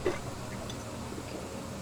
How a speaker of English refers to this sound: And open the lid of the teapot.